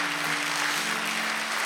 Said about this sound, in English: Come on, somebody. Let's put our hands together for the Lord.